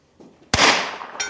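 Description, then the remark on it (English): A single sharp gunshot cracks out loudly and rings off in a long fading wash, followed a moment later by a fainter, bright metallic ding from a steel target at 100 yards. “Ooh, did you hear the ding? It's shooting all right now.”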